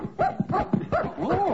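A cocker spaniel named Martha barks in a quick run of about five sharp, high-pitched yaps, ending in a longer whining bark.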